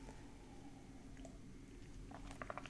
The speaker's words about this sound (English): Excuse me while I take a sip of my tea.